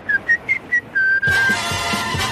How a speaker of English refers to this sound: All you have to do is whistle. You do know how to whistle, don't you?